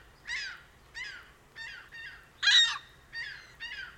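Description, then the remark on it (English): Ring-billed gull calls: a series of about seven harsh, nasal squawks at a steady pace, with one louder, shriller cry in the middle, heard clearly with no talking. “They don't know for sure, but in third place, ring-billed gulls.”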